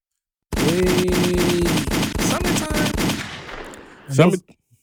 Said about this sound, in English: Yes, gunshots will be happening in the summertime.